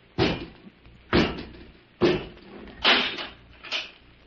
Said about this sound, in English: Come out and close the door, Robot 2.